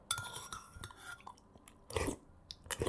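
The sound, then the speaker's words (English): Slurping of soup at lunch: a few short, wet, noisy sucks in quick bursts, with soft mouth sounds and a faint clink of dishes between them. “This sound that you heard is called slurping.”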